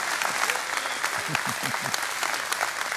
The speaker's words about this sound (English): Come on, give me a better hand clap than that. I'm preaching better than your amening.